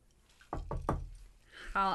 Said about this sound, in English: Knock on wood